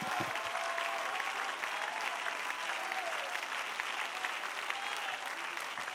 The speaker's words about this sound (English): If you feel that way, I wonder if you would clap your hands and give God praise in this room.